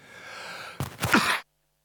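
A quick, harsh cough in two or three rough bursts, loud and breathy, following a moment of quiet hiss and then cutting off abruptly into silence. No one speaks.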